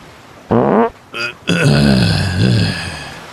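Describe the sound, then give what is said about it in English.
Three flatulent bursts: a short buzzy toot, a brief squeaky one, then a long rumbling, sputtering fart, almost a wet one, that wobbles in pitch and trails off. No talking. “Man, that was almost a wet one.”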